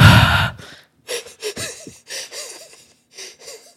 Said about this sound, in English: Like, I can hear you breathing. I know. I was trying to breathe, like, quietly through my nose, and I felt like I was like